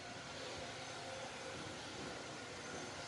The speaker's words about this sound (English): I'm going to appreciate that someone is running a vacuum. And forget the fact that she's decided to run it right now.